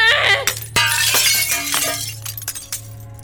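A stack of ceramic dishes crashes to the floor in a loud burst of shattering, followed by several bright clinks and scattered pieces rattling as the debris settles, with a low steady hum beneath.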